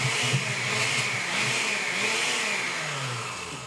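A blender runs continuously, a loud, steady high-pitched whir with a wavering low motor hum underneath, holding for the whole few seconds without pause and no voices.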